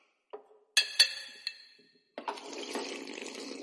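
Glasses clink together as in a toast, three bright, ringing taps, followed by a steady rush of liquid sloshing or pouring. No one speaks.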